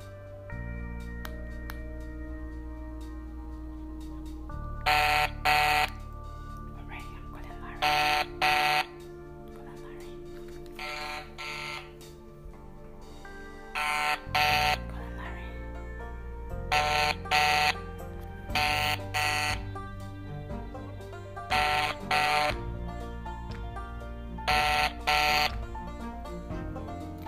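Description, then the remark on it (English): A phone's outgoing call ringing tone repeats in short, shrill bursts, often in quick pairs, every few seconds over a steady humming, tonal background, with no one answering. “Okay, I'm calling Larry.”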